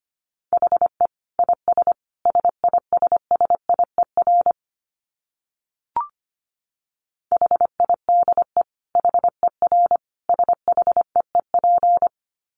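Rapid Morse code at 25 words per minute, keyed on a steady mid-pitched tone, quick dits and longer dahs in clustered groups, with a pause and a single soft click midway before the sending resumes.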